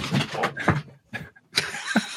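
A dog knocks a sound panel off a wall, making a loud, scraping clatter in two rough bursts, a brief lull between them, then a second rattling crash that fades out.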